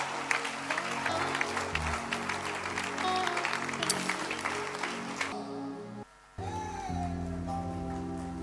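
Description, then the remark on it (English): An audience claps loudly and steadily for about five seconds, a dense crackle of many hands over sustained low musical tones. The clapping then drops away, leaving the music alone after a brief gap. “I think if you are clapping, you can do it better for the Lord.”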